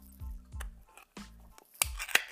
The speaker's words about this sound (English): And please forgive all the background noise as I'm opening here. I'm opening a can of cat food.